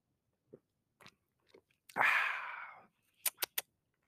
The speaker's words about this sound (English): I'm gonna open this chela right now and watch. You're gonna hear it pop open. Let me see. Let me take a quick sip.